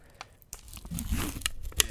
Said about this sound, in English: All right, I'm opening up my cheddar cheese Pringles.